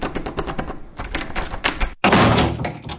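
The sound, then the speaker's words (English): A stuck, unlocked door rattles and thumps in a rapid series of jolts as people try to force it open, then after a brief pause bursts open with a loud crash and scrape. “Open the door, Florence! It's not locked! It's stuck! It won't give!”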